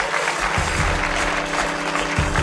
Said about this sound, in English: Great stuff tonight. Let's give them all one more round of applause, please.